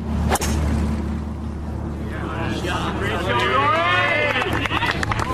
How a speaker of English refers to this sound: There's going to be a cheer at the end of this one. What a shot. What an incredible shot. Absolutely flushed right down the pin.